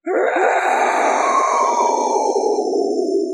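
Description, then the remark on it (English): A voice imitates the otherworldly scream of a monster with three stacked red eyes, one large mouth and several tentacles, hovering up out of the water: a sustained, gravelly roar-groan lasting over three seconds at steady loudness, its pitch sagging slightly toward the end. “And it yells and screams at you in an otherworldly language.”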